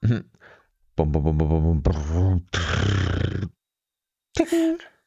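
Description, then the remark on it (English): A voice imitates a drum roll, said to sound a bit like a lawnmower, with a series of loud, buzzing, rumbling trills, then a hissy, breathy burst like a cymbal clash, followed by a brief pause and a short final vocal flourish. “Can you do one of your special drum rolls, please, that sounds a little bit like a lawnmower?”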